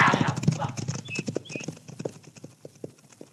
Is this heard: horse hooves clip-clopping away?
yes